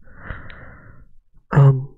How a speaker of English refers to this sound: Can you hear me? It's probably going to pick up my fat breathing.